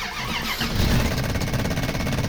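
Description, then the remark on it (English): An old truck engine with a failing solenoid cranks over and over without catching, a loud, steady run of low, rhythmic chugging pulses with a harsh grinding edge and no voices. “Damn it, it's the solenoid again.”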